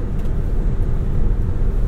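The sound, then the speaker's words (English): Steady, dense low rumble of road and engine noise from inside a car driving itself in autonomous mode on a highway at about 68, constant and unbroken with no voices. “right now, the car is driving itself.”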